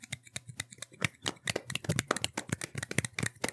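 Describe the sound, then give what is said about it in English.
A quiet, rapid run of soft slapping clicks, like fingers flapping against a palm in a one-handed clap, repeating unevenly for a few seconds with no voices. “People saying you can't clap with one hand. You can. It's just very quiet. Yeah, we just did it.”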